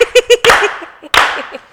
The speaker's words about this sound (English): Can we slow clap you?